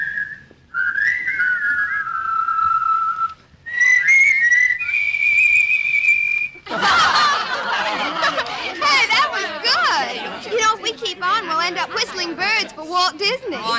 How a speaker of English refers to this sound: Everybody was at the party whistling, but you hadn't come.